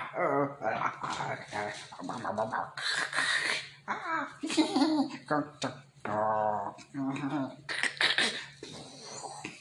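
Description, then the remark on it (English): Someone snarls and growls in a rough, throaty voice, imitating a wolf, with a string of harsh bursts and breathy rasps. “And all of a sudden, a goblin hot riding a wolf was like,”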